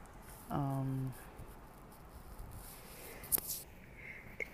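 A short voiced buildup is followed a moment later by a sharp, breathy burst, a single human sneeze, with quiet background noise around it and no talking.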